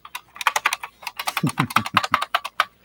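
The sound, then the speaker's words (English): Rapid, clacky keystrokes from a vintage buckling-spring computer keyboard with Japanese keys, from around 1992, typed in an irregular burst of crisp, sharp clicks with a few heavier thocks mixed in. “This is my daily driver forever, just so I can have more Meta keys.”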